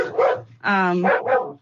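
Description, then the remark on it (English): A dog barks several times in a quick, uneven series, with one longer, drawn-out bark in the middle, barking at a woman who passed by the room. The barks are loud. “The dog she's barking at my mom now.”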